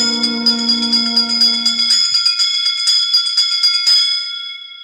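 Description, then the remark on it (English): A bright bell rings during a ghost hunt as spirits are asked to give a hint, in a rapid, steady tremolo for several seconds, its shimmering metallic overtones sustaining loudly before fading out near the end. No voices accompany it. “Give us a hint by ringing a bell.”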